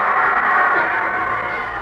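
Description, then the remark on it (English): A stadium crowd at a football game cheers as the USC football team comes out on the field, a steady, loud roar of many voices blending into one continuous wash of noise, holding level throughout without pauses. “And just listen to that crowd.”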